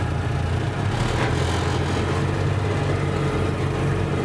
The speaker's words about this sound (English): So as we're driving along, the seed harvester will rotate and knock all of the seeds off the heads of the plants, and they will then collect in the big drum that we're dragging behind us.